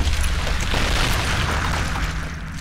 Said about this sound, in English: But in just a few seconds, it changed. By mid-afternoon, he heard a rumble while working underground, and then an incredibly loud bang.